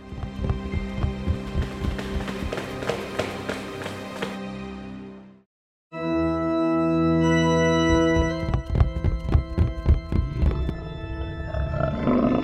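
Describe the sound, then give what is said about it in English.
Loud, deep demonic roaring layered over heavy rhythmic pounding and sustained low rumbles, cutting to silence for a moment midway before surging back even stronger. “That's it. That's the demon.”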